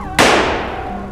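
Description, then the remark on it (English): A single loud gunshot from a six-shooter revolver fired into the air inside a bar cracks out sharply, followed by a long reverberant tail that slowly fades, with no voices around it. “Suddenly, a gunshot rings out in the bar, and everyone freezes.”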